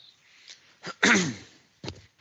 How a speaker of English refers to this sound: Coughing brought to you by